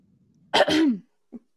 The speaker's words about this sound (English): I coughed and it went pew.